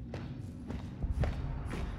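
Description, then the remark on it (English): Four heavy, evenly spaced footsteps on metal, a Minecraft Wild Update sound effect, ring out over a low, rumbling bed, each step a harsh, crunchy metallic clank with a gritty, distorted edge, loud. “All right, distorted footsteps on metal.”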